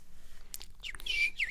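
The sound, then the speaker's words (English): Birds call from trees on the other side of a river, with a few sharp chirps followed by a brighter, sweeping whistled call, faint and airy over a low, steady background rumble. “There was these birds, like in the trees on the other side of the river”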